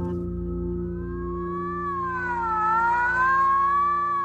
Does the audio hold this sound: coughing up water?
no